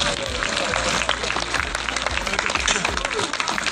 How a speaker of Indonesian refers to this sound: Tepuk tangan dulu.